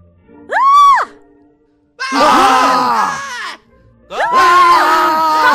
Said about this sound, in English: Stop screaming! Stop screaming!